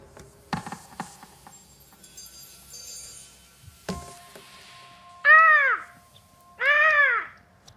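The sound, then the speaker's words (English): Two loud, drawn-out seagull cries ring out one after the other near the end of the theme tune of the Apple TV Plus show See, starring Jason Momoa, following a stretch of quieter music with sharp percussive hits. “I think there's a seagull sound effect in that theme tune.”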